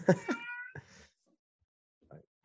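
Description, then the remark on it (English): A male cat lets out a loud, drawn-out meow, trailing into a rougher second call, then after a short silence gives a brief, fainter chirp. “Your cat is going to, you're making great points, but your cat is going to just destroy it for the listeners.”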